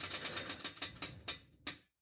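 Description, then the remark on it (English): A prize wheel, given a hard spin, ticks rapidly, its sharp clicks gradually slowing and spacing out until a final lone click as it comes to rest. “Spin the wheel one last time.”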